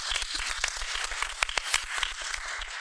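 A crowd applauds steadily for a few seconds, many hands clapping in a dense, continuous patter with a few sharper claps standing out, fairly loud and with no talking over it.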